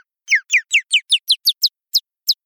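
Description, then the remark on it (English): A high, pitched-up mountain bluebird chirp, a single chirp isolated from sound archives, repeats about ten times in quick descending sweeps, speeding up slightly before the last few spaced out, crisp with no voices. “And then we pitched it up”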